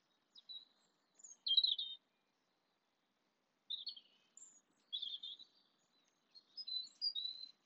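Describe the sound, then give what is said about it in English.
A small orange-breasted bird chirps outdoors in the early morning while looking for food, in scattered bursts of high, thin tweets and short twittering phrases, separated by brief pauses; fairly soft, with no talking. “some orange-breasted little guy over there. He's just looking for a little early morning breakfast.”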